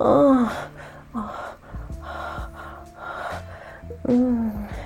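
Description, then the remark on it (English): A woman gasps sharply several times, fairly loud, her breathy voiced intakes separated by quieter breathing, with a strong gasp at the start and another near the end. “I gasp when I feel your mouth cover my nipple and begin to suck.”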